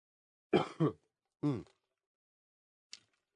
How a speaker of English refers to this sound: See? Still not 100%. Yeah. No. There'll still be some coughs all over this show.